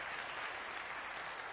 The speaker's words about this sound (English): I've never had an applause for spit comment.